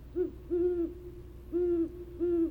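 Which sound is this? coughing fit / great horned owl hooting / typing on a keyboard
great horned owl hooting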